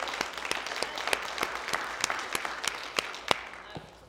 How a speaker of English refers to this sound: Come on, can we give Him one more hand clap today, please?